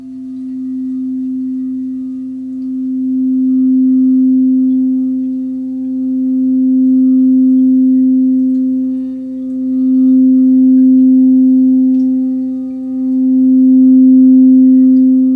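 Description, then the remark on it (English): A steady, pure tone on the note C, used as a root chakra tone, hums continuously for the whole stretch, its loudness gently swelling and easing every few seconds, with no voices. “This is the root chakra tone, C.”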